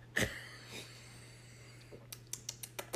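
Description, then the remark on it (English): Two short, breathy sniffs at a glass of Merlot red wine, the first sharper and louder, followed by a quick run of light clicking taps over a steady low hum. “Yeah, I'm going to do a little sniff here.”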